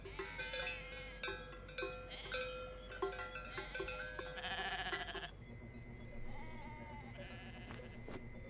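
A small herd of goats bleats over and over, their wavering cries overlapping at moderate volume, with a livestock bell clinking faintly in the background.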